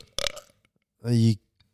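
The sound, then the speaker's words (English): A single loud, deep burp rumbles for nearly half a second, following a brief noisy burst a moment earlier. “Yeah, if I do it, I'll do like a massive burp.”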